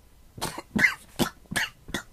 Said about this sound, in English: Who coughs like this? It hurts. It's like scratching the back of my throat.